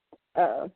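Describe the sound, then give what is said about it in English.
A dog whimpers: a tiny faint yip, then a short, wavering, high-pitched whine lasting about a third of a second, with no voices. “You could have told me to go get the dog.”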